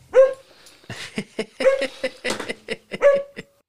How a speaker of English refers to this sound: Hey, Pixie. Pixies. Stop barking. Please, Pixie.